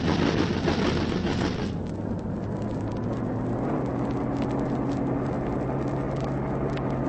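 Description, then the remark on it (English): A pom-pom gun on a boat fires at a low-sweeping aircraft in a harsh, noisy burst of rapid heavy thuds, then lower popping shots continue beneath the aircraft's steady, humming engine drone. “That was no ordinary machine gun.”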